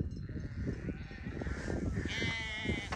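A young lamb lets out a deep, drawn-out bleat with harmonic wavering tones rising over steady background farmyard noise; no one speaks.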